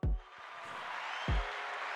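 A burst of crowd cheering and applause sound effect rises into a steady, dense wash of clapping noise, with two deep thumps punctuating it near the start and middle.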